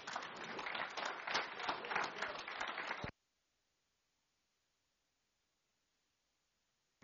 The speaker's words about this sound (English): All right, help me give the Lord one last clap offering.